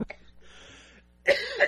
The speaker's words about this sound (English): Oh, goodness. Oh, see, now I'm coughing.